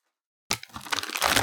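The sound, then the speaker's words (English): After a brief silence, crunching of hickory-flavoured potato stick snacks from Canada erupts, a dense run of crisp, crackling bites and chewing that grows louder and busier toward the end. “Love them for the crunch, love them for the munch, love them for the taste.”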